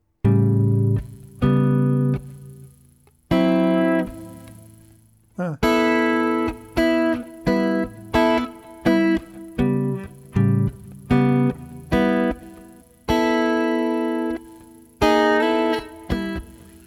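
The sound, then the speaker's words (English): A guitar plays a pentatonic dominant scale (scale tones 1, 2, 3, 5 and minus 7), opening with a few ringing strummed chords before moving into a steady run of single plucked notes that each sustain and fade, with no voices. “This is a pentatonic dominant. It's scale tones 1, 2, 3, 5, and minus 7.”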